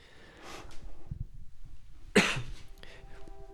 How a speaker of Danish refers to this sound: Lad os prøve at høre den, så kan jeg også hoste en lille smule.